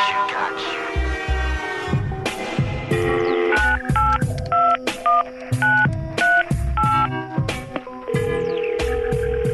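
A rapid sequence of telephone touch-tone dialing beeps, short steady dual tones pressed one after another in an uneven rhythm, clear over a low background hum, with no talking.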